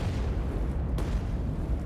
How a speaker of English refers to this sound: So she waited, treading water, until she heard the muffled report of two quick explosions echo out from the dam site.